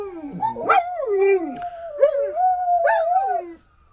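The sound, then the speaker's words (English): A dog howls loudly along to an ambulance siren in long, wavering, rising-and-falling tones, with a few brief yips breaking up the sustained cry. Nobody speaks. “Mark has shared with us his dog singing to the ambulance.”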